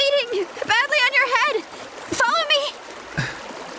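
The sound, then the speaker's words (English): Turbulent river water rushes and splashes steadily throughout, a constant wash of noise beneath strained, wavering vocal sounds from people. “… and …'s momentum is stopped by a big tree that has fallen in the path of the raging water”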